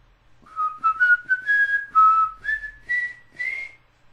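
A person whistles a short rising tune of about eight clear notes over roughly three seconds, moderately loud, with no talking, to see if spirits will copy it.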